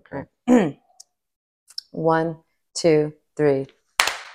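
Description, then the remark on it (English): Voices speak a few short rhythmic syllables, then a single sharp, crisp clap of hands rings out at the end, struck together in unison. “And we're gonna 1, 2, 3, we're gonna clap.”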